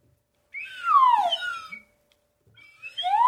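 A slide whistle swoops in long gliding tones, first rising then sliding downward in a bright harmonic arc, pausing, then starting another upward slide. No talking over it.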